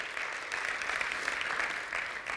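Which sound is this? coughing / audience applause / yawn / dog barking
audience applause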